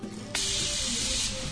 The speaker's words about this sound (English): Hey, there's your steam sounds.